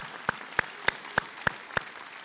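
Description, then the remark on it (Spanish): A church audience claps in unison as applause to the Lord, six sharp, evenly spaced claps in a steady rhythm at a moderate volume, with no voices over them. “Hoy sí, le damos un aplauso al Señor con todo nuestro corazón.”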